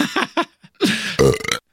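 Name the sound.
belch sound effect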